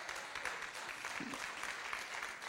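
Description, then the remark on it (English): Soft, scattered polite 'golf clap' applause from a small church audience at Believers Church in Louisville, a light patter of claps spread evenly, polite rather than enthusiastic, with no voices standing out. “Thank you so very much for the golf clap, and I mean that.”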